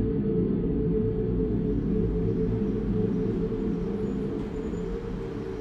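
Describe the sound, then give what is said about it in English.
A deep, steady engine roar rumbles continuously with heavy low-end drone, then begins to ease off and fade slightly toward the end as it recedes into the distance. No voices. “Dimly, you hear the engine roar and then recede into the distance.”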